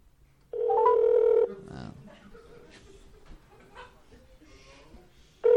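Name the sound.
telephone ringing on speakerphone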